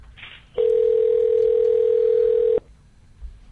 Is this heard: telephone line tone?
yes